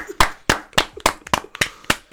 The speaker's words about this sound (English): Bukayo Saka scored again. That's light. Let's clap for a demigod.